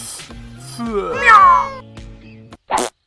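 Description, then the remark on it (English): A cat alone in a tree lets out a long, wavering meow that rises and falls, followed after a short pause by a brief, sharper second cry, both fairly loud over a low steady hum. “Oh, my kitty!”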